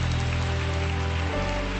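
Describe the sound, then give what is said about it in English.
A church audience claps for people coming to the front to receive Jesus, a dense, steady patter of applause that fills the whole moment, with low sustained tones humming underneath and no voices. “Let's give them a clap right now.”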